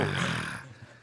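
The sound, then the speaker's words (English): A loud, throaty grunt about a second long, rough and roar-like at first, then fading. A voice making an exaggerated imitation of sex noises, with no other talk. “What's it sound like when you have sex? It's more like this.”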